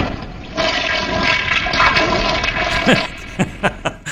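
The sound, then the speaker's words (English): A toilet flushes, a loud rushing swirl of water that drains away, ending with a few gurgles and short splashy pulses as the bowl refills. “You pick the wrong way, and that toilet flush is the sound of your money that what could be happening.”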